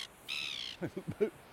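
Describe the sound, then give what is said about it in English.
A gull gives a harsh, drawn-out squawk followed by three or four short, rapid yelping calls, loud against a quiet outdoor background, as a person walks through its territory. “Seagull didn't like me walking through its territory.”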